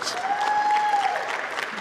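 A crowd claps in a steady, dense burst of applause, fairly loud throughout, with a thin whistle-like tone rising and falling briefly over the clapping.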